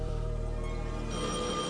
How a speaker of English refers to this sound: Answer that phone.